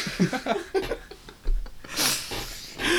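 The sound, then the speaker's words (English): Breathy sniffing: a few short nasal inhales early on, then two longer, louder rushes of air through the nose near the end, with no talking. “Don't sniff yours.”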